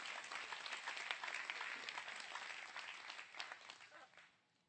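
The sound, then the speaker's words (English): A church audience breaks into a round of applause, dense overlapping claps forming a steady bright wash that holds for several seconds before tapering off quickly at the end. “Now put those hands together and give your coach, your king, your captain a hand, a round of applause.”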